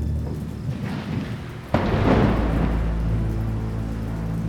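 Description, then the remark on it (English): A sharp crack of thunder breaks out at once and rolls into a loud, sustained rumble, over the steady hiss of heavy rain pouring down onto a lake, with no voices. “A crack of thunder boomed above them, and heavy rain began to pelt the lake.”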